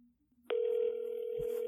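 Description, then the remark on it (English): A steady electronic ringback tone from a phone call starts abruptly after a brief quiet moment and holds at an even pitch, clear and fairly loud, with no voices. “Oh, I think it's ringing.”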